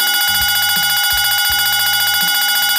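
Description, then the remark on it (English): A loud, sustained, brassy horn tone rings out for about three seconds to signal the end of the Pet Buzz show, with a deep, rhythmic thumping pulse underneath and no voices. “That's the horn signifying it's time to wrap up the show.”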